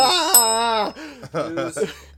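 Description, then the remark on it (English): A voice imitates a ringing news bell as a segment cue, a drawn-out sung tone followed by three shorter, bouncy notes, fairly loud, with no real bell audible. “All right, so let's ring the news bell.”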